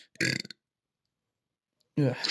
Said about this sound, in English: I literally just silently burped away from my microphone, and then you do that.